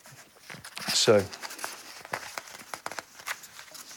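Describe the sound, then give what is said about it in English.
Rustling and crinkling of paper as bits of paper are unstuck and peeled apart, with a louder crackling burst early on followed by scattered, irregular crackles and soft tearing sounds. “Sorry, I'm just unsticking my bits of paper.”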